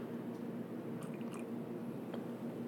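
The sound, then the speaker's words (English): Quiet sipping of coffee from a cup along with a faint rustle of book pages being flipped, a few soft brief sounds over a steady low background hum, with no one talking. “I'm literally just sipping coffee and flipping pages for you guys.”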